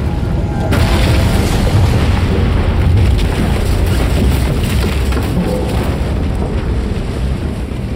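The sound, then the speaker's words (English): A roof crashes down in a long, loud collapse: a burst of heavy crashing gives way to a deep, booming rumble of falling debris that stays steady for about eight seconds. “As the roof comes crashing down on us both, I really do mean it.”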